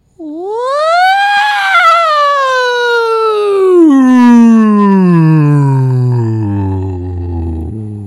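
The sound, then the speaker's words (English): A single voice imitates a siren on a sustained vowel as a vocal exercise, sliding up in pitch, then gliding slowly down to a low rumble over about eight seconds, loud, with no words. “Try making a siren sound using vowels up and down your voice range.”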